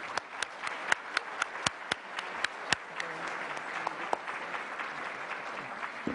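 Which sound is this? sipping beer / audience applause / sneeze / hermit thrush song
audience applause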